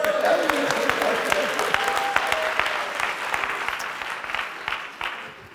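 A crowd applauds for Jesus steadily for several seconds, a dense patter of many hands clapping at an even loudness, with faint voices mixed in before it tapers off slightly at the end.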